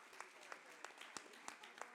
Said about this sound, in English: A round of applause for those guys.